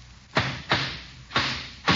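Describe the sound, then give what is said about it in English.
Hammering a nail into a board to build a hut: four sharp, loud metallic-edged blows in an uneven rhythm, each with a short ringing decay, and no voices. “Why don't you hold it and let me hammer the nail?”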